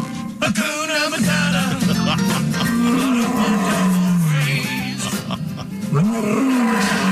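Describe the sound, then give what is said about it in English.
Lions roar and snarl loudly while attacking a poacher, in a continuous stretch of deep, sustained growls whose pitch rises and falls, with a few sharper bursts and no pauses for several seconds. “And now you can picture exactly what happens when lions attack poachers.”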